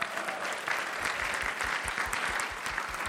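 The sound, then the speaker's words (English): A church audience applauds steadily in the morning to welcome Pastor Mike, many hands clapping in a dense, continuous patter that stays at an even, fairly loud level throughout, with no voices standing out. “Church, why don't we give a warm welcome to Pastor Mike this morning.”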